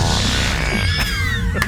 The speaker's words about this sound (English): Farts. All right, that's wonderful. Always funny.